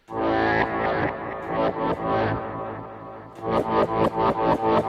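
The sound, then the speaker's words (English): Electric guitar run through heavy effects, producing a thick, keyboard-like tone: a loud sustained chord wash that gives way to a steady run of repeated, pulsing chord stabs, with no talking. “That sounds like a keyboard.”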